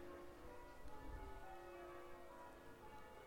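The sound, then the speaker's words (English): Church bells rung by a team of village bell ringers sound from further down in the village, their overlapping tones ringing steadily and softly on a cool, crisp, clear night at 8 o'clock on November 11, with no one speaking. “As you can hear, the bell ringers have started again further down in the village.”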